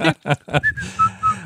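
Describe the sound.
Three quick vocal bursts give way to a short whistled tune of a few clear, bright notes at shifting pitches, fairly loud, with a faint low hum underneath.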